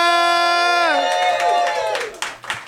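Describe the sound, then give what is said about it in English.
A pre-Christmas live comedy audience at the Lab at the Improv in Los Angeles, California, cheers loudly, with a sustained, falling whoop ringing out before it breaks into scattered clapping and shouts near the end. “What a hot, hot pre-Christmas crowd.”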